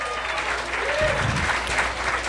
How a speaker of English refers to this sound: Come on, a round of applause for those guys.